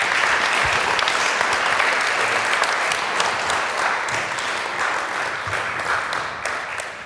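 An audience applauds steadily for about seven seconds, a dense, loud wash of many hands clapping that holds strong throughout and eases off slightly at the end, with no voices over it.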